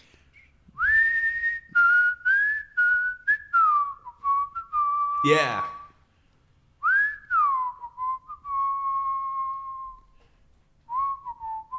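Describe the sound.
A man whistles a bouncy melody while being recorded, a run of clear, sliding notes in short phrases with brief pauses, as another person tries to snap along; interrupted once by a sharp click and a quick spoken word.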